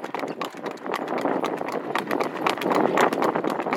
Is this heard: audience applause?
no